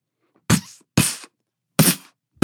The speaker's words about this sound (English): Hector slammed his fists into the punching bag.